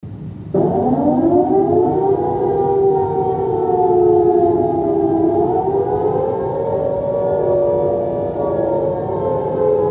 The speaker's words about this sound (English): the answer is what is the air raid siren? It's created by fast-spinning fans and is used in case of emergency.